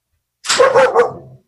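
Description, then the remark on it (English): Dogs bark in a quick, loud burst of about three overlapping yaps, lasting around a second, with no one talking. “And my dogs.”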